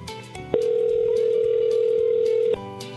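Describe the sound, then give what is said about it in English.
A phone call ringing out over a speakerphone: one steady two-second ringback tone, loud and clear, with quiet background sound before and after. “I'm going to try her again. See if she'll pick up.”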